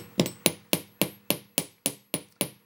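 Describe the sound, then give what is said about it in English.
Sharp hammer taps on a dead soft sterling silver ear wire being shaped and strengthened for an earring, about nine evenly spaced strikes with a bright ringing edge and quick decay, no voices. “When you hammer metal, you're actually strengthening it.”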